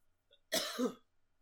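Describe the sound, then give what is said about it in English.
A single sharp cough bursts out, lasting about half a second with a raspy, throaty tail, surrounded by near silence. “sorry, I had to cough.”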